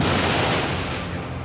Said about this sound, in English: And then you hear a crackle.